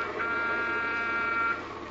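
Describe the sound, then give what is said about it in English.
A car horn blares in one long, unbroken blast lasting about two seconds, a steady, loud, buzzy tone with no voices over it, sounded to make a truck pull over. “Okay, Jerry, blast your horn.”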